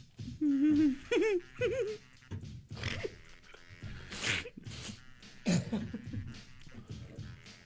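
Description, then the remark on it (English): Wet sputters as someone, laughing while trying to drink, spits a mouthful of water out all over a studio floor, a few bursty sprays mixed with squeaky, strained choking noises and gasps, fairly loud. “I just spit water all over the studio.”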